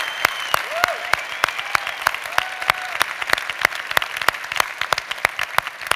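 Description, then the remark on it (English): An audience at Fellowship Church breaks into loud, sustained applause, dense sharp claps overlapping steadily for several seconds, with a few short rising whistles and faint cheers mixed in. “Let's give a crazy round of applause for that.”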